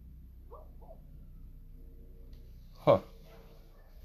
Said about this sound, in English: But sorry, guys, the dogs are going off over here, and I'm trying to figure out what are they barking at. What's going on?